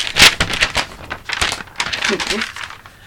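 Scratching of a pen writing on paper, a quick irregular series of dry, raspy strokes with brief pauses between them, loud.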